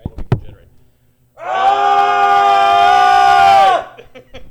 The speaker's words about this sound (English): So let's put the microphones down. Everybody yell right now.